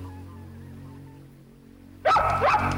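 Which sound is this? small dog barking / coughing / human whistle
small dog barking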